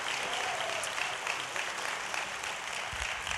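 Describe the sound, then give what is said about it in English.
A church audience clapping together to honor Jesus, sustained, dense applause, a steady wash of many hands at a fairly even loudness with no voices standing out. “Come on, put your hands together for Jesus today.”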